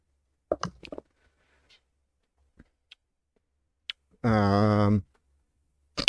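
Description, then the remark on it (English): A quick burst of hard clattering clicks as dice tumble on a table, rolled for an intelligence saving throw, followed by a few scattered small ticks, then a short sustained vocal exclamation and a final click. “I like this dice is being so good to me.”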